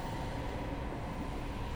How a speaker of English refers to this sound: Awake. Still on the train.